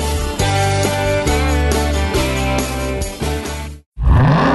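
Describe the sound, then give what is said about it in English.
A loud supercharged 6.2-liter Hemi V8 roars up in pitch as it accelerates hard, arriving right after a burst of driving music cuts to a split second of silence. “Most people just hear an engine. We hear a 6.2-liter Hemi V8 with a supercharger that accelerates so fast, it'll suck the air out of your lungs and knock you back in your seat like you're an astronaut in a rocket ship”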